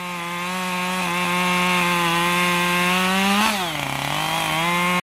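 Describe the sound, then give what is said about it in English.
A chainsaw runs at a steady, loud buzzing whine, then its pitch drops and wavers as the blade bogs down cutting the trunk of a felled tree into smaller pieces, with no voices. “Tree down, but many hours more of cutting the trunk into smaller pieces, still audible in late afternoon as I write this, and then the transportation of the logs.”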